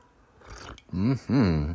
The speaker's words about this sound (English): That cat even agreed. That was the bad cat, too. That's not even the whiny one. I don't know what it's doing in there.